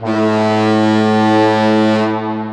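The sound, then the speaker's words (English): A single loud, sustained foghorn blast, a deep low-pitched drone with rich stacked harmonics, holding steady for over two seconds before easing off slightly at the end. “We can't volunteer to put a foghorn on our house.”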